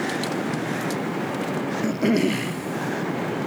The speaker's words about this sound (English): As most of you probably know or don't know, we're sitting on an airplane. If you didn't know that, then well, you do now. You could probably hear the background noise.